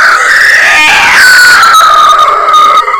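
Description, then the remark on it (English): A voice imitates a high, screeching wail, one loud sustained cry lasting about three seconds whose pitch slides gradually downward, strained and piercing throughout. “about to leave when they hear this high screech sort of wailing thing off in the distance.”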